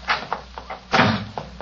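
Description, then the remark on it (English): A woman slams a door shut with a loud thud, framed by a few lighter knocks and rattles before and after, with no voices. “She slammed the door in my face.”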